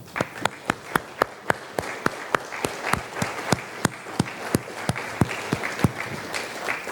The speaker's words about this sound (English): Can we just pause right now, right here, to give all of our mothers a big round of applause?